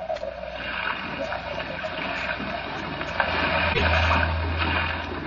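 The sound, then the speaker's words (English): A small fishing boat tosses on a raging, racing sea in hard-blowing wind, with steady rushing, splashing sea noise and wind throughout and a low engine drone swelling in near the end; no one speaks. “Plunging and bobbing about in a little boat in a raging torrent”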